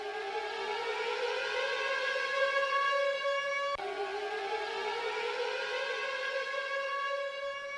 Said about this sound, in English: So that siren signifies that we are talking about Peter Sagan.